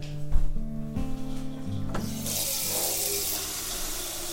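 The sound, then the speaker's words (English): In the morning, a tap turns on and water runs steadily into a dog's water bowl, a bright hissing stream after a few clinks and bumps, continuing until the end. “Water.”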